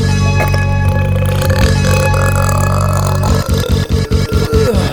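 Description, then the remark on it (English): A long, loud, rumbling belch drawn out for about three seconds, followed by a thumping rhythmic beat that kicks in right after it. “Belch on the track.”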